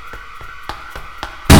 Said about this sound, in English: Oh, crap, that alarm's probably for us.